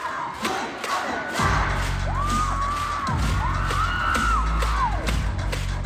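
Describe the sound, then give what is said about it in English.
A large crowd of masked concert fans in Korea screams and cheers loudly and continuously, with rising and falling high-pitched shrieks over a dense roar and a deep low rumble underneath. “Masks are still required, but the screaming ban has been lifted. And so cheering is back in Korea.”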